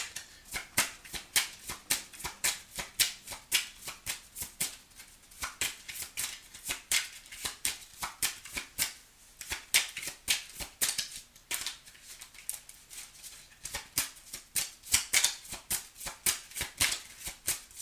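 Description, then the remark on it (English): Tarot cards are shuffled steadily for a long stretch, a dense run of crisp, papery flicks and snaps, with no talking over them. “May I have another card, please?”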